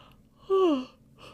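A single voiced yawn with a drawn-out tone that slides downward in pitch, loud for under half a second before trailing off into a quiet breath.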